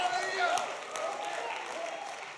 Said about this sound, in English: If you believe that with me, shout amen like thunder and give God a mighty, mighty hand clap.